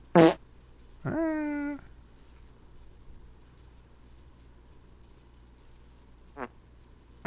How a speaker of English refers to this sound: That's funny. Those are real farts, dude.